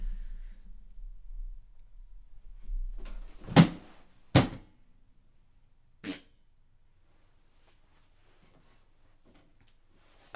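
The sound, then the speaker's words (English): A person deliberately falls off a chair: two heavy thuds in quick succession, a lighter knock a moment later, then near silence with faint low rumble. “I'm going to go ahead and fall off this chair, and that will be a sign that the podcast is over.”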